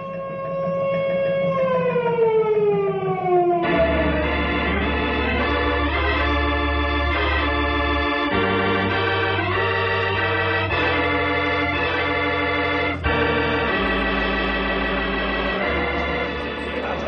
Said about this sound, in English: Henry, sound the disaster alarm.